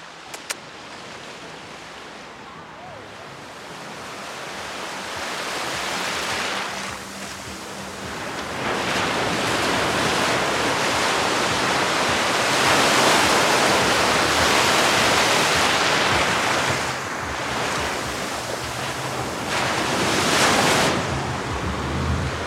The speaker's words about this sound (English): So I'm standing in the ocean right now. I have waves coming up and crashing into my ankles. It's about 80 degrees.